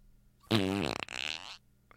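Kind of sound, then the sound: vocal imitation, imitated fart noise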